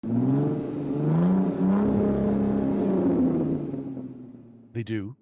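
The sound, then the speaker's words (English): A voice imitates a car engine revving, a low rumbling drone held for several seconds, ending in a quick, rising vroom burst. Fairly loud, with no other sounds. “I'm going to add lots of car sound effects, because apparently car sound effects make everything way cooler.”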